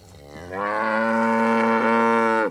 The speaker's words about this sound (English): Some 40 Brangus cattle amble along the dry pasture and mesquite scrub of Robert Cervenka's ranch.